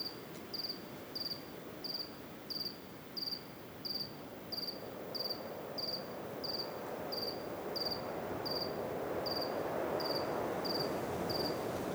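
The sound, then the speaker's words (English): A lone cricket chirps in a steady, evenly spaced rhythm, its high-pitched pulses repeating about twice a second over a soft, rushing background noise that grows slightly louder toward the end. “you know, I just let it flow, and I'm sitting here typing, and, you know, my wife walks in and she goes, "Are you just listening to a single cricket?"”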